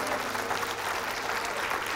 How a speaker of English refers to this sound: Can you give the Lord a hand clap of praise?